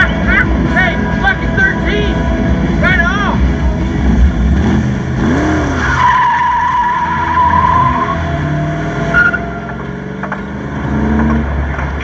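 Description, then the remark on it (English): A Corvette's engine rumbles low and steady and stalls while its tires squeal in several sharp bursts, with one long, high screech drawn out near the middle, fairly loud. “Little did they know, you know, it stalls on you every now and then.”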